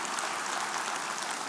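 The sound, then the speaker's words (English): A church audience applauds the men of the church for their service: a dense, steady wash of many hands clapping at once, hissy and even in loudness throughout, with no voices heard over it. “And so can we just give our guys another round of applause for all they do?”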